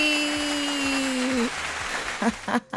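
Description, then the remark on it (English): An audience claps in a steady round of applause welcoming Femi Imokai Owolabi, known as the real Femi, under a held musical tone at first. The tone fades midway, the clapping continues, and brief vocal sounds break in near the end. “Let's welcome, with a round of applause, Femi Imokai Owolabi, popularly known as the real Femi.”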